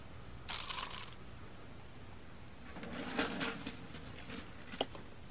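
Water is poured: a short hissing rush, a pause, then a longer splashy trickle into a container, ending with a small clink. It is fairly quiet, with no talking.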